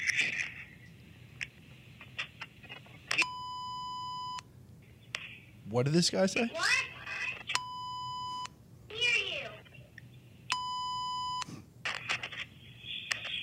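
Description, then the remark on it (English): Three loud, steady electronic censor bleeps, each lasting about a second, cut in at regular intervals over a man's voice in a Ring camera video, with brief snatches of speech and a higher voice heard between them. “They beep out everything the guy fucking says.”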